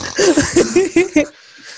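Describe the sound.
A voice mimics snoring with about five quick, breathy, rasping bursts in a steady rhythm, followed by a brief pause and one more snort at the end.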